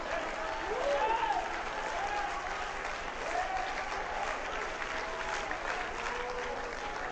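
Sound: audience clapping hands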